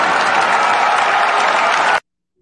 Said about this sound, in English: I think we can finally say Matt Ryan, let's give Matt Ryan a round of applause real quick.